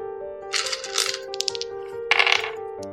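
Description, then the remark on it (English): A die is rolled, clattering and tumbling across a hard tabletop in quick, bright bursts of clicks, pausing briefly before a final rattling settle, over a steady low hum. “Yeah, I'm gonna roll with another dice, because this dice has like given me one good roll and the rest have been garbo.”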